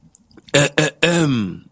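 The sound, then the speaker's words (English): A person clears their throat: two short, rough rasping bursts followed by a longer voiced, downward-sliding 'ahem', loud and alone with no talking. “Gotta clear my throat for this one.”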